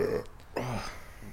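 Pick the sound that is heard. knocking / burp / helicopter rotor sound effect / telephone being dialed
burp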